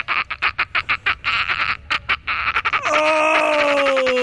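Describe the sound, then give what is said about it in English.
A person imitates a dolphin, first with a fast train of chattering clicks, then a high, sustained whistle that slowly slides downward, all soaked in heavy reverb. “so we can find dolphin noises”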